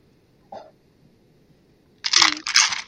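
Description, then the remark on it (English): A small click, then two short bursts of sharp clattering as a twenty-sided die rolled for a strength check skitters and bounces off a rim before settling on nine, with no one speaking. “It was going to be a 20, but it bounced off of the rim of the...”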